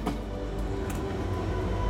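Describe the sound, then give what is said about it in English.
A continuous low rumble of a train running along rails to New York City, steady and moderately loud throughout, with a couple of faint clacks near the start and middle and no voices. “One day, Edgar boarded a train to New York City to meet his former caddy and student, Tommy Wilson, and hire him as his assistant.”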